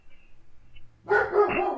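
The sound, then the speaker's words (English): After about a second of near silence, dogs break into a loud burst of barking, two quick overlapping barks, with no one talking. “Oh, thanks, dogs.”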